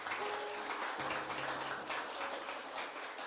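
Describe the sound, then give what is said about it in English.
An audience gives the Lord a clap offering after a prayer, a sustained, dense burst of applause, loud and steady throughout, with a faint hum underneath and no one speaking. “Why don't we give the Lord the loudest clap offering that we can give him?”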